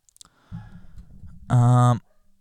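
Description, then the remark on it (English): A dog gives a low rumbling growl leading into a single loud, drawn-out bark, strong, then quiet. No one speaks over it. “Cool, my dog's barking again.”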